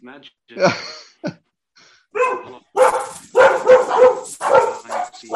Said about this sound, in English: All the dogs are going nuts because my wife is going to be.